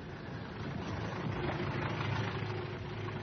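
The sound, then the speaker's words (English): A taxi's engine idles steadily for a few seconds, a continuous low rumble with an even, unchanging drone and no voices over it. “There's a taxi. Hey, taxi!”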